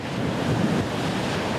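A steady, loud roar of ocean surf washes along the Baja coast of Mexico, a dense continuous rush of water with a hint of wind, with no voices.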